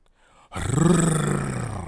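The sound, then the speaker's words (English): A voice imitates a Harley motorcycle engine roaring past, bursting in loud and abrupt after a brief quiet moment, then holding a rough, throaty growl that slowly sags in pitch. “On the way there, I see this dude roars past us on his Harley.”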